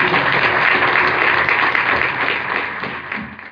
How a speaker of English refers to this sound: And applaud our participants today. Thank you very much.